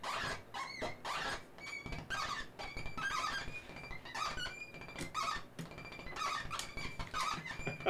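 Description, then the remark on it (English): A modular synth patch using just two envelopes yaps like a small dog, firing a steady string of short, squeaky bark-like bursts, fairly loud, with no talking. “Oh, we got dog barks. I think that's a small dog.”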